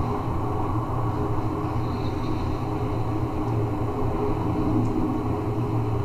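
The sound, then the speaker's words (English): A continuous, heavy low rumble roars steadily for the whole stretch, a sustained video game explosion with a mushroom cloud where the divine tree used to be, dense and loud with a faint hiss on top and no voices. “explosion is still happening.”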